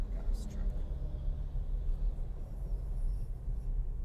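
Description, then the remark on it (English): A big truck's deep engine rumble drones steadily, a heavy low roar that holds constant throughout with road noise around it. “It is a big truck.”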